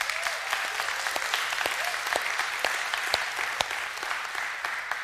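An audience claps steadily for a couple married a week earlier, a dense, even patter of many hands with sharp individual claps popping out, holding at a constant level for the full five seconds with no voices standing out.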